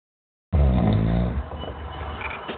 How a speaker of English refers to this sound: Who the fuck is snoring on the line?